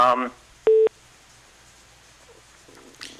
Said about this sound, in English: No, I heard these beeping, so either people are trying to call into you.